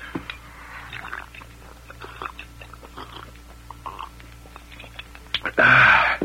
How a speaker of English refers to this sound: Let me swallow that water, Sagebrush. Here, Dirk. As soon as I wet my whistle myself.